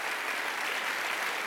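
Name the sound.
audience clapping hands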